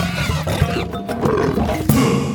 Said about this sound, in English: And now it's time for Stereotypical Animal Podcast Theme Song. Here to bring you to conservation news.